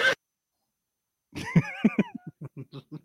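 After a short silence, a horse neighs once, fairly loud: a high, wavering whinny that breaks into a run of quick pulses, fading as it ends.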